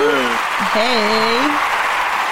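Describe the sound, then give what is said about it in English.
A hand-clap sound effect: a dense wash of hand clapping runs steadily throughout, with a voice whooping over it partway through, cheering above the applause. “More hand claps.”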